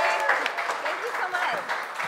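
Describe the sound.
An audience claps steadily for about two seconds, a dense, hissy patter of many hands at even loudness, with a few voices calling out and chattering through it.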